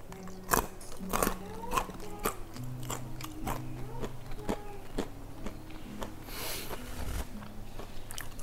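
Crisp crunching as someone bites into and chews sea-salt caramel-covered nuts, with sharp irregular cracks repeating over several seconds and faint low mouth sounds between them.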